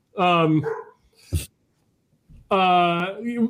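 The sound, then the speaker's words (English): A 98-pound Bernedoodle barks twice, loud, each bark drawn out and whining, with a sharp knock in the pause between them. “My dog's barking in the background here.”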